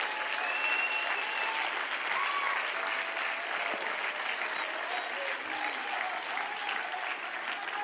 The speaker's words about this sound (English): Come on, clap your hands.